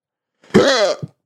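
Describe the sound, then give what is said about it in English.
A single loud, voiced hiccup right into the microphone, with a sharp onset and a brief wavering pitch, followed by a tiny catch of breath, with no talking around it. “Right in the mic. I got hiccups.”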